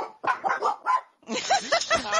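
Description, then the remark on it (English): A dog barks in a short cluster of sharp yelps, pauses briefly, then lets out a second, busier run of higher whining barks. “Pavlov's dog. Yeah, there's a bell. Ring a bell and they bark.”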